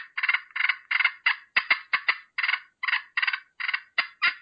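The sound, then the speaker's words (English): Wild turkeys fighting purring: a fast, steady run of about a dozen short, raspy rolling bursts, fairly high-pitched and evenly loud, with no voices over them. “They're fighting purring.”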